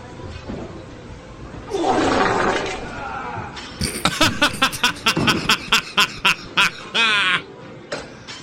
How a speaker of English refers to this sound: And this is furthers my proof of the meme fart being a sound and not me actually farting because somebody else used it. Here we go.